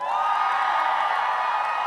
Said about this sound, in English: So at the count of three, I want you to yell and welcome the DSM podcast listeners to the room as well. One, two, three, go!